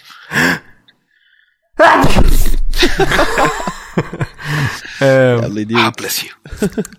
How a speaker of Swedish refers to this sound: Jag ska bara ta och nysa en sekund. Vänta.